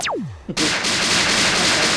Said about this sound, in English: Let me see what kind of gunshots I got in here.